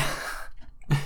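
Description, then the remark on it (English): A cat sneezes twice on a bed, each a short breathy burst with a brief quiet gap between them, and no voices. “My cat just sneezed on my bed.”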